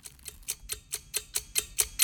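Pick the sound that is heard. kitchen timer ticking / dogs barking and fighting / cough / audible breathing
kitchen timer ticking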